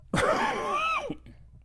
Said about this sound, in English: Sorry about that. I don't have a cough button.